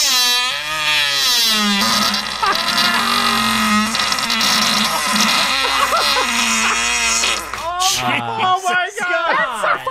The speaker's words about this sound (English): Case in point, I've attached a small clip of my gas that I call Creaking Door. Okay. This is a great email. This is a listener fart. This one's called The Creaking Door.